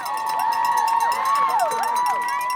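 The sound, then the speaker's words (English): A dense crowd of college spectators at the Wellesley Scream Tunnel screams and cheers nonstop for passing marathon runners, loud, with many high-pitched shrieks overlapping into a continuous roar of excitement. “Another tradition here at the Wellesley Scream Tunnel is for college spectators to kiss passing runners.”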